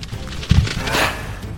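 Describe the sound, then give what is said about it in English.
A creature slams against the steel of an elevator, its fangs sinking into the metal: one low, booming thud followed by a harsh, noisy metallic rattle that swells briefly and fades, with a sharp knock at the very end. “It slammed against the metal, fangs sinking into it like butter, shrieking loudly as they got stuck.”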